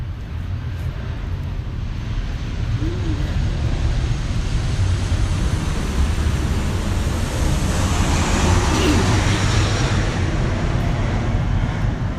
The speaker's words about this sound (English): oh, a plane is going by.